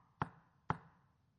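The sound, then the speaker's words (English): Two firm knocks on a door, about half a second apart, each a short hollow thud that fades quickly, with no voices. “I stand at the door and knock.”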